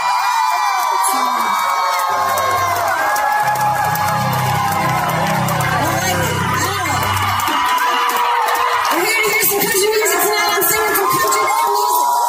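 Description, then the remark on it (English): A large concert crowd erupts in loud, sustained cheering, whooping and shouting for the full twelve seconds, with overlapping high-pitched yells and a low rumbling swell in the middle. “And the crowd reacts because, you know what?”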